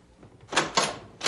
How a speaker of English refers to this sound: Well, then, let's open the door all the way.